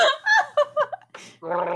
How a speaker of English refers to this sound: I'm drinking beer over here while we're recording, so I don't know how well it's going to sound as a gargle or if it's going to like be too bubbly.